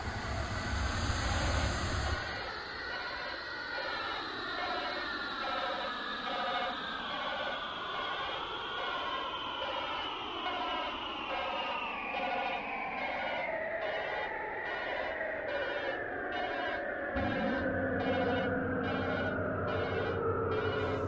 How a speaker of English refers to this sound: Shutting down the engines. Nice landing, Commander.